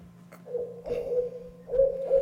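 An owl hoots in a few drawn-out, wavering calls, one long call followed by a shorter pair after a brief pause, moderately loud over a low steady hum.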